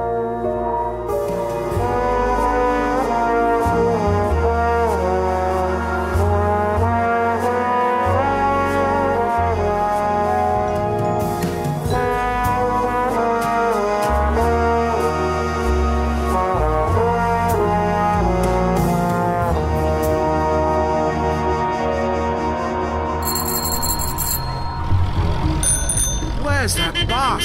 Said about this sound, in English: The Edgware Road thronged with traffic. Move, will ya? You drive like a bloody beggar. Bicycles wove through a long line of buses and taxis that, nose to tail...